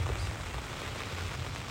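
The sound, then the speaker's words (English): Steady rain falls at night in cold weather, hissing with a dense, even patter, a constant wash of drops with a low rumble underneath and no voices. “If it quits raining and I'm able to get out and go glass, I'll let you guys know, but if not, this is where I'll be.”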